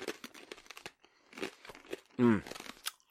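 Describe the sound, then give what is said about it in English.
Crunching of pork scratchings with a crinkly bag rustling, a series of sharp crackly bursts over a few seconds, interrupted briefly by a short voiced sound near the end. “It lightens the pig dust that bursts in your mouth once you crunch down on it.”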